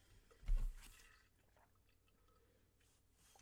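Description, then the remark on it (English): A single soft slurp as someone sips a drink of water, with a brief wet squish of liquid, followed by quiet room tone and a faint swallow-like rustle near the end. “So let's take a quick little drink of water and then move on to the overall lesson for April.”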